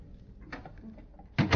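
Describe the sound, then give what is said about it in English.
A door opens after a quiet moment of faint shuffling, ending in a sudden, loud clunk and rattle that cuts off abruptly. No one speaks. “Will you open the door”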